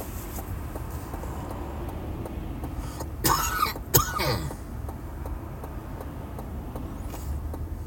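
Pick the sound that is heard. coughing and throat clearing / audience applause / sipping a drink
coughing and throat clearing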